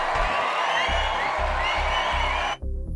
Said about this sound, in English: People, that deserves an applause.